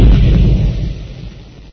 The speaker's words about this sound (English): Has Bob's squad been lost in the explosion at the arsenal, or have they escaped?